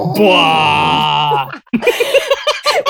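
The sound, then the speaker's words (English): A voice imitates a dramatic Inception-style notification blare, one of a smartphone maker's new energizing text and notification alerts: one loud, low, droning groan held for about a second and a half, then people start talking. “What, so next time you get a message, you're going to hear that little inception.”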